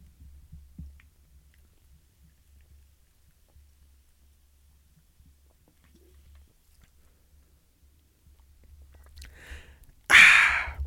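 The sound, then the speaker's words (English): Someone sips and swallows Ozarka sparkling water, with soft low gulping thumps and then a sudden, loud fizzy rush near the end. No one speaks. “Yeah, my mouth gets dry, and I need to take another sip of my sparkling water.”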